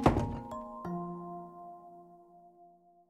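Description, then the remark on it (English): A door shuts with a solid thunk and a couple of quick knocks as a man rushes out the door, eager to get to work, then a bright ringing tone lingers and slowly fades out. No one speaks. “rushes out the door, eager to get to work, showing NASA how it's done.”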